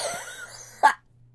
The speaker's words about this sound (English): Wow. This is what you love to hear on a podcast. Let me get my water. Is tons of coughing.